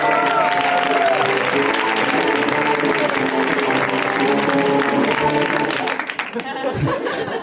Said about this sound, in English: So please, a wild round of applause